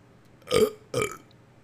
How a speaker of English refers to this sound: Hold on, I got a burp.